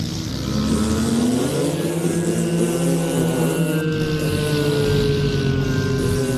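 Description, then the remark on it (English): A bull battleship spaceship blasts off with a loud, continuous engine roar, a deep droning hum slowly climbing in pitch over a rough rumbling bed. No one speaks. “The bull battleship blasted off with the terrifying roar of another giant cow emission.”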